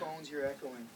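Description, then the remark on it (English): A brief burst of voice with a hollow, doubled quality, speech echoing back through the phones on a call, lasting about a second. “Your phones, you're echoing.”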